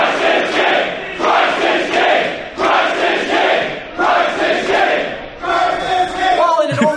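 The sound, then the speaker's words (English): A large crowd chants "Christ is king" in loud, unison bursts, repeating the phrase about five times in a steady rhythm, with a lone voice rising above the crowd near the end. “Now, this part I thought was really fucking funny, because if you listen to the Christ is king chant, like, they all cut off pretty much at the same time, except for one guy who didn't get the memo and just yells it by himself.”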